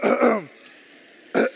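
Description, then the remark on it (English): An audience clears their throats in two rough, gravelly bursts: a longer, louder one at the start, then a short quiet pause before a brief final rasp. No talking. “All right, I need y'all to clear your throat.”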